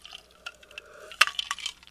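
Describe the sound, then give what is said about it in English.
Water is poured into a glass and sipped: a soft, thin trickle with a faint ringing tone, one sharp clink midway, then a few small wet gulping sounds. Quiet throughout, with no talking. “Sorry, I didn't have a chance to wet my whistle before I sat down here.”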